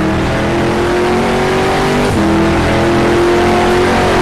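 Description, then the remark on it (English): A race car engine roars at high revs under hard acceleration as the car comes out of the last curves onto the front straightaway, loud, its steady harmonic whine climbing and briefly dipping as it shifts, with no voices over it. “Really kick the car sideways. And now hard acceleration.”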